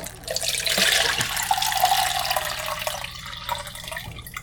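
Film developer is poured out at the end of stand developing, a steady, continuous, splashy stream, like draining a tank into a sink, loud for several seconds with no voices.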